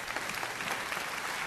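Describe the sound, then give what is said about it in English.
A crowd applauds steadily, a dense, continuous patter of many hands clapping at once, full and holding an even level throughout with no voices standing out. “Come on, let's clap for the guy.”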